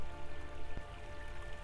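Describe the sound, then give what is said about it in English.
Soft, steady patter of raindrops falling continuously at a gentle, even level, with a faint sustained tonal hum underneath and no one speaking. “I became a gentle puddle, feeling the rain droplets bounce off me and new life forms beginning within me.”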